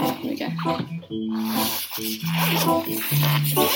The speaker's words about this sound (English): Here we go. Quite a long zip. Okay, it's off.